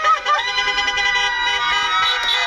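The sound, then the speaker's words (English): A car parade organized by Project Cheer Up, a group of New Jersey cheerleaders: many horns honk at once in a dense, continuous blare of overlapping high-pitched tones, with a siren-like wail mixed in. No one speaks. “That's a car parade organized by Project Cheer Up, a group of New Jersey cheerleaders who, when school and extracurricular activities were canceled, decided to find ways to safely boost the energy wherever they could”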